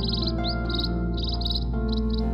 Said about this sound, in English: On the other hand, white-backed munias evolved in high-stress situations, competing for resources. As a result, the wild white-backed munias sing a small number of simple songs, primarily used in mating.